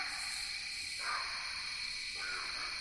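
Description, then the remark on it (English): A dense, steady chorus of night insects trilling continuously in mid-October in Land Between the Lakes, Kentucky, with high buzzing layers and a couple of brief swells in the middle range, with no voices. “It is mid-October in Land Between the Lakes, Kentucky, the time of year when insect songs dominate the soundscape.”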